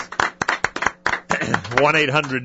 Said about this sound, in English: And also to the volunteers. Come on, everyone give them a round of yeah, applause.